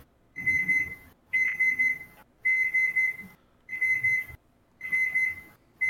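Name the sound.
oven timer beeping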